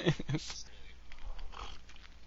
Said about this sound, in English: And I can hear you taking that big slurp of your mixed wine.